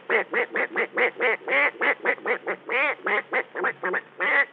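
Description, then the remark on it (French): A human voice imitates a duck, making a rapid, steady run of about twenty loud, nasal quacks, with no other sounds around them. “Le canard.”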